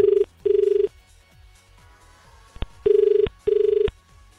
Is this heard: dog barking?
no